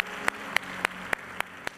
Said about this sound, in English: Come on, give a round of applause to those that made that decision. Great decisions.